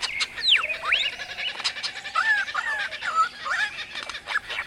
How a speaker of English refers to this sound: Those are kookaburras and lyrebirds native to Australia. And that's the white bell bird, found only in northern South America.